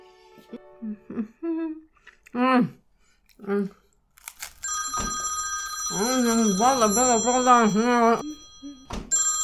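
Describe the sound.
A telephone bell starts ringing partway through a late lunch and keeps trilling steadily. A voice talks over it, and short murmurs and crunchy chewing-like noises come before it.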